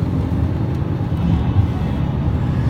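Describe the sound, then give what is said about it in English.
Steady low-frequency rumble of a car with newly fixed suspension and brakes in motion, heard from inside the cabin, a continuous droning road noise with no distinct events, moderately loud and even throughout. “What a difference actually having the suspension fixed and the brakes fixed and everything fixed.”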